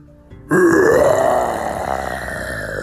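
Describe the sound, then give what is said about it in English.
A person imitates a dinosaur with one long, loud, growling roar that starts abruptly, rises slightly in pitch, then holds and rasps for over two seconds. “I'm really good at making dinosaur sounds. Watch this. And Bert took a step back and let out a big roar.”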